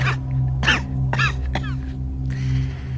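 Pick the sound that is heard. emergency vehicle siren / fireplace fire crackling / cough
cough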